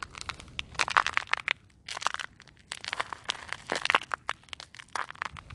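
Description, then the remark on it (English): Crisp, crackly crunching of footsteps in snow, taken in flip-flops, coming in uneven clusters of sharp, gritty bursts with brief pauses between, fairly loud and with no talking. “And that is a satisfying crunch. I'm wearing flip-flops in the snow.”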